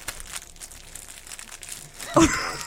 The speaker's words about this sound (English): I'm going to crinkle the package. I'm going to chew out loud. What snack is this? Just listen.